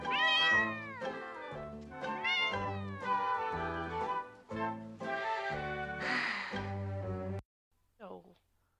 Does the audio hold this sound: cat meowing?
yes